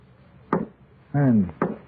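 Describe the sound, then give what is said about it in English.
Two heavy, dull knocks on a wooden basement door, about a second apart, with a short voiced sound falling in pitch between them. “And it's the basement door again.”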